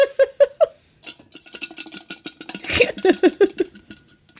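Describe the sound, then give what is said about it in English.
A metal straw rubs against the inside of a cup, making a quick run of squeaky, scraping rubs with a brief rattling scrape partway through. No one speaks. “Well, you might have to remove the metal straw so that it doesn't make metal straw rubby weird noises when you sip.”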